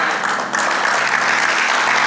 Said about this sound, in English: Y'all giving me golf claps. You ever watch golf?